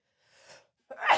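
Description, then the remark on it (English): A single loud sneeze: a soft breathy intake of air, a brief pause, then a sharp explosive burst. No talking. “Bless you.”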